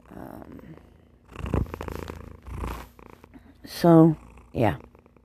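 A cat purrs close by in rough, pulsing bursts, with a couple of short, tonal, meow-like calls near the end.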